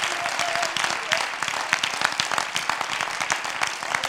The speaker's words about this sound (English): Could you clap your hands under the Lord?